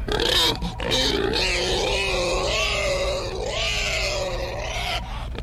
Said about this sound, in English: What the fuck was that? Well, that was a squealing pig, sir. It sounded like it. Do you enjoy that sound?